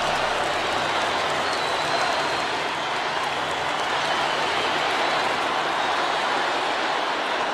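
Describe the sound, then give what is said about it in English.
A full football stadium crowd in Moscow chanting at an event with Vladimir Putin, heard as a dense, steady roar of many voices that stays loud and unbroken throughout, with no single voice standing out. “So full soccer, Jesus, full soccer stadium. They start chanting.”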